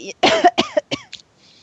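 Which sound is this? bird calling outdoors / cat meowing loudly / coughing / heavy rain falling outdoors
coughing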